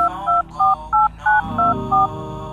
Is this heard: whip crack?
no